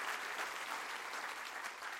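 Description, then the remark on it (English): A church audience claps together to rejoice in a steady, dense burst of applause, many hands striking at once, evenly for a couple of seconds. “Clap your hands real big and rejoice, because I'm just getting started real good on what I want to say.”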